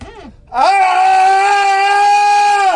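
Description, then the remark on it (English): A man imitates how he woke himself from a nightmare: a short falling groan, then one loud, sustained bellowing yell held at a steady pitch for about two seconds, with nothing else heard. “Honestly, I woke up screaming like that, bellowing.”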